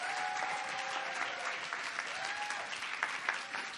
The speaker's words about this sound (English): Yeah, before we get into it, a huge thank you for the staff, all the hard work you guys are putting into it. Can we just give them a huge clap, huh?